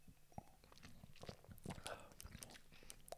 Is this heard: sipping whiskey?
yes